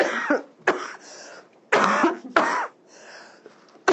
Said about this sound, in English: Okay, it's coming. There's a cough coming. Sorry, guys. Here we go. Brace yourselves, everybody. Cover your ears.